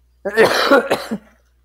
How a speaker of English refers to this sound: I got, guys, I don't have Corona, okay? I'm just coughing because I was drinking something.